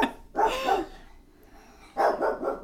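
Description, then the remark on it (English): A dog barks in two short, loud bursts separated by a pause of quiet, with no one speaking. “Okay, we've calmed down the dog, and I have an answer on this.”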